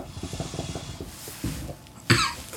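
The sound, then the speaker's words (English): Low, rapid bubbling gurgles from a hookah being smoked in a small Middle Eastern themed lounge about 10 by 10, drawn on for over a second, followed by a short pause and then one sharp, loud cough. “Yep, it's a hookah.”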